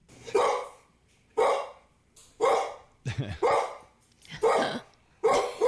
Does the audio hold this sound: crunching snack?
no